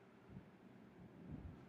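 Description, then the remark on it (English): A low rumble of thunder after a big lightning flash, faint and steady, slowly building up in strength as it rolls on, with no voices present. “There is a big lightning, so I'm waiting for the”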